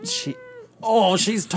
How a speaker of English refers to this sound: is there a cat? Yeah, this is Gidget. He wants to talk.